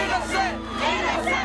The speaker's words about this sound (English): And then Jackson comes out the courthouse, and the crowd behind their fence, miles away, go absolutely crazy.